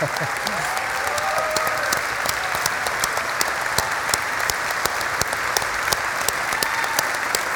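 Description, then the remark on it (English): An audience applauds steadily for several seconds, with many hands clapping in a dense, even wash and sharper individual claps standing out. Faint voices murmur underneath. “I think we got a little more clapping to do, it looks like.”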